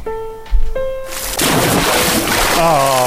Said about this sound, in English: Splash.